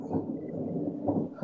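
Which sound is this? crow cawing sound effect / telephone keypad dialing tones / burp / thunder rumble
thunder rumble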